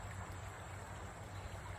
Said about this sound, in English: This is the dam that I built so I could have some nice rushing water behind the cabin.